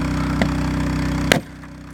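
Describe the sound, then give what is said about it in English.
Two sharp blows strike a car's small window of bulletproof glass over a steady idling engine hum, the second hit louder and breaking it, after which the background drone suddenly drops away. “It takes a while before the window finally breaks.”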